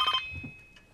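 A telephone rings briefly in a single short electronic burst at the very start, then trails off into quiet room noise with a faint tone lingering. No one speaks.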